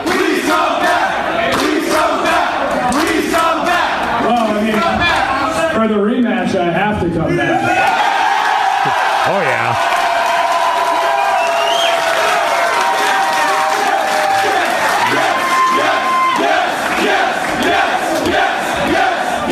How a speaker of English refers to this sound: What a great crowd.